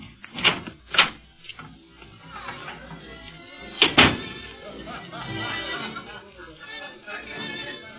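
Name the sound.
door opening and closing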